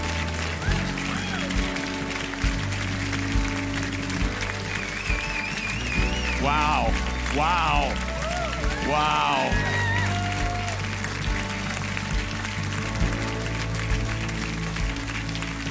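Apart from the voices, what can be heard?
audience clapping hands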